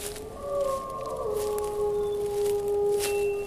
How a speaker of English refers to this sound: Three ominous wolf howls. This is London. Who's keeping a wolf in London?